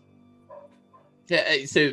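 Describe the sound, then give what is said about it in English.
Two loud, close barks in quick succession, likely a human voice imitating a dog, after a quiet stretch with a few soft murmurs. “You hear a dog barking off in the distance.”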